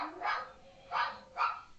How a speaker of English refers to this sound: Hold on. We got dogs freaking out. Maybe they'll settle here in a second.